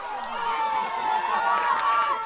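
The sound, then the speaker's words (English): Crowds in the streets around Brazil's largest city cheer on news of Luiz Inácio Lula da Silva's presidential election win, a dense, steady roar of many voices and shouts that stays loud and unbroken throughout. “Crowds around Brazil's largest city erupted on news of da Silva's win.”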